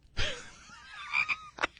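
A frog croaks with a drawn-out raspy call followed by a couple of short, sharper croaks. The croaks are fairly loud, with no talking over them.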